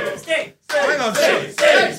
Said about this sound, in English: Hang on. Surely opening the door gets a boot. You can't just cheer opening and closing a door.